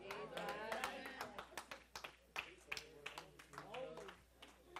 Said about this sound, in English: I got like maybe two, three. I heard like three claps on that one.